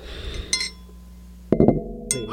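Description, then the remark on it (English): Cups clink together at the microphone several times: a single bright clink, then a quick cluster of sharp knocks, and one more, each leaving a faint high ringing that fades. No one speaks. “Sounds like church bells, huh?”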